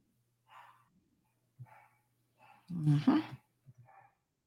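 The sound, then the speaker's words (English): A dog named Zeus lets out one loud bark midway through, surrounded by a few short, quieter yips and grumbles over a low steady hum. “Gotta hear Zeus barking.”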